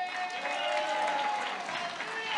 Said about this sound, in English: Give yourself a round of applause. No, don't patty cake. Now, wait a minute. Now, I don't play when it comes to stuff like that. I say give yourself a round of applause in here.